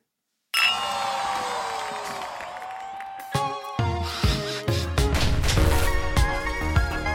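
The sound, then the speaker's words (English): Glasses clink together sharply during a New Year toast, leaving a bright ringing tone that fades over a few seconds, followed by more scattered clinks and clatter with a busy background. “Toast to a new year, new pod, same brothers, new journey. I'll toast to that.”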